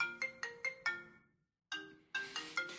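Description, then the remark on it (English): A phone ringtone plays a bright, repeating melodic pattern of quick tonal notes, pauses briefly, then starts again louder and fuller. No one talks over it. “What are you doing, phone? It really wants us to stop.”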